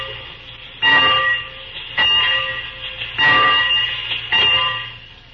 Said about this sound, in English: Well, what do you want me to do now, mister, huh? Oh, just ring the bell.